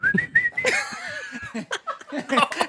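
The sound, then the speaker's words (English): A person whistles a sustained, gently rising call to a dog passing by, in the middle of wishing someone a happy birthday, followed by a brief lower whistle, then muffled chatter and soft laughter. “He started whistling to this dog.”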